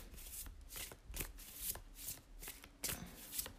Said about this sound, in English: I'm not shuffling a full deck here because I see some of them are in a rubber band.